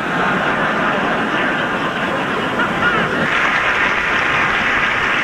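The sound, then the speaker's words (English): A crowd applauds steadily for about five seconds, a loud, dense wash of clapping with no talking over it and no break in the sound. “Only clap if you like masturbation”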